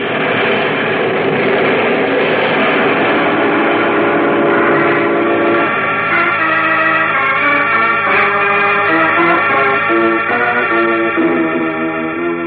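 A train rumbles and clatters steadily at the Metropolis Railroad Station, then a loud, sustained train horn or whistle blares in layered harmonic tones through the second half, with no talking.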